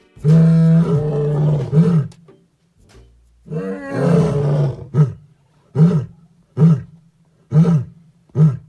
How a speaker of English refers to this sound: They said that they could hear roaring all the time, like they could hear lions roaring through their neighborhood.